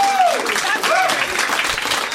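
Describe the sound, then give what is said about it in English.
A crowd claps steadily and loudly throughout, a dense wash of applause with a couple of rising whoops or whistles riding on top in the first second. “I'm able to accept your applause.”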